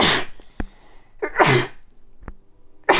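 A string of loud sneezes, three sharp bursts about a second and a half apart with quiet gaps between them, and no talking.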